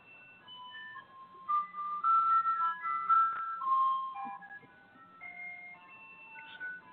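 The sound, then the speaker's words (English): A tinkly ice cream truck jingle plays a bright, repeating melody of sustained electronic notes, steady, with a low hum underneath and no talking. “Are you driving the ice cream truck”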